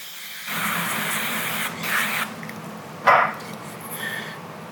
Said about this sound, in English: Turn that over. Whoops, almost spilled. And spray the other side with oil.